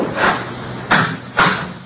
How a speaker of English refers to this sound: Close the door there.